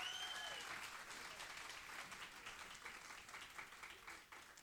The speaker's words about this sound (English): Amen. Come on, give our next level band a big round of applause.